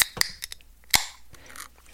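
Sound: beer cans being opened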